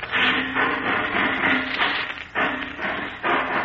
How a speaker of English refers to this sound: Yeah. Sounds like he's ripping off another door. Must be the vault.